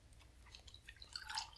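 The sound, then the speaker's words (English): Nitro beer pouring into a glass, a soft wet fizzing and crackling that builds toward the end over a low background rumble, with no talking. “My nitro beer is broken. Have my hand ready to take the glass whenever it's poured.”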